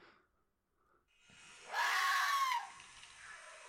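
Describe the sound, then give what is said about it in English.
A single harsh, shrieking red fox scream rings out for nearly a second, loud, rising abruptly out of a quiet, faintly hissing background before cutting off. “I have a Scream of the Red Fox here.”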